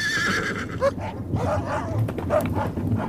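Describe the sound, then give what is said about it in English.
A hound, just released for a pursuit, barks in short, sharp bursts amid a noisy, bustling scene, with a horse whinnying high and shrill over the clamour. No one speaks. “Release the hound!”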